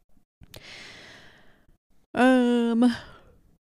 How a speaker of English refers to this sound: Can't yawn mid-episode. I'm sorry. I guess it's better you yawning during your episode than when you were yawning during my episode.